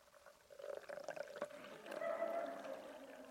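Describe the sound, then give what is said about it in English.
Zephyr Hills 100% natural Florida spring water pours steadily into a cup for a few seconds, a continuous gurgling stream whose hollow ringing tone rises in pitch as the cup fills. No one speaks. “We're going to open this water. You don't have to. It was just a question. I'm going to pour it in the cup.”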